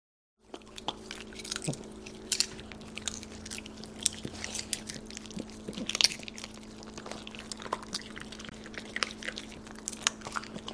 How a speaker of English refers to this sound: Anyway, this is her dogs eating popcorn. So, misophonia warning for anyone listening that you're about to hear some dogs eating popcorn.